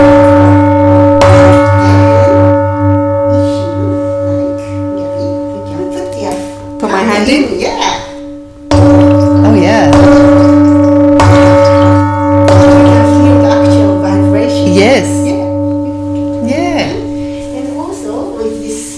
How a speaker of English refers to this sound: Then, actually, I have a water in this bowl, and when I hit with this big stick, you can see the splashing of water, very sort of activated.